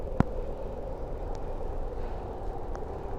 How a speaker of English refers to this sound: My train is 1 minute away. Let's see. Oh, my train appears to be approaching.